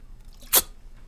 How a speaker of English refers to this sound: Okay, and I need a quick sip.